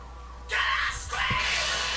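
person screaming

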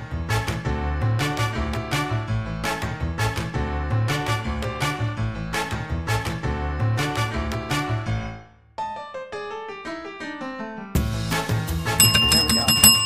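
bell ringing

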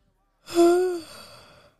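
yawn

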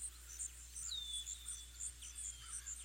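birds singing outdoors

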